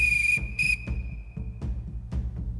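A police whistle, blown by a police constable raising his truncheon, shrills in one long, piercing blast, briefly harsher and louder near the start before trailing off, over low rumbling and a few dull thuds. No one speaks.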